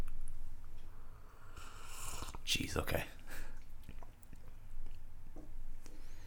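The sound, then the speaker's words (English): A short, loud slurping burst of air and liquid lasts about a second during a tasting, surrounded by quiet murmured talk and a few soft mouth noises. “Let's go to the tasting”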